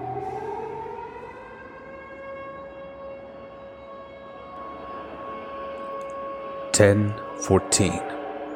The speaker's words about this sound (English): For but two long minutes, all you could hear throughout the city were the sirens warning of a disaster that was already upon them.